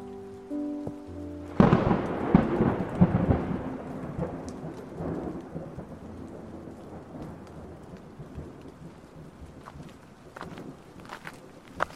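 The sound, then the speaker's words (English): During a thunderstorm with lightning, a loud crack of thunder breaks at about two seconds and rumbles away slowly, while steady rain patters throughout and scattered drops tap. “Should we stop? I see lightning.”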